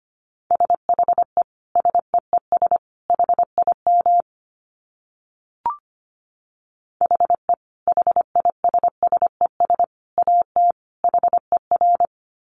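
Fast Morse code at 25 words per minute: a single steady beep keyed on and off in quick dots and dashes, sounding in two long runs separated by a short pause with a faint click. No voices.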